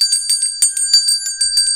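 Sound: bell ringing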